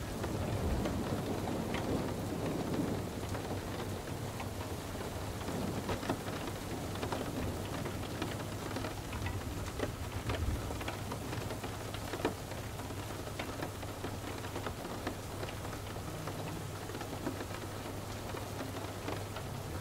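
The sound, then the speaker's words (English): Steady rain falls on hard urban surfaces, a dense, even patter with scattered sharper drips and a low constant rumble underneath, continuous for the whole stretch with no voices. “Rain Meditation for deep sleep and overthinking”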